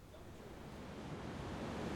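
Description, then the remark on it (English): Rain falls in Midtown Manhattan, heard from under a building scaffold, in a steady, unbroken hiss with a low rumble underneath, holding an even level throughout without voices or distinct individual drops. “It's raining when I meet with Cesar under a building scaffold in Midtown Manhattan.”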